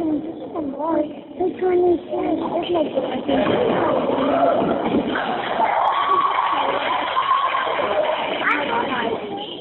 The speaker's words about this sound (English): It sounds like it's a basketball game. Yeah, that's what I think. It sounds like a basketball game because you can hear a ball dribbling and you can actually hear sneakers squeaking. You can hear the sneaker squeaking.